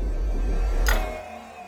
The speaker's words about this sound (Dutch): Oeps. Dat was de koelkast.